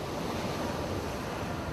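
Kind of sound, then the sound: nature, ocean waves and surf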